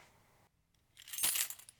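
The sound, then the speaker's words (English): A bright metallic jingle and clatter as car keys drop into a cup, brief, settling with a few small rattles before fading. No one speaks. “Why don't you put your car keys into this cup?”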